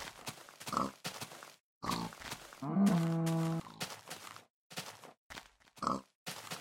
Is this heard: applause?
no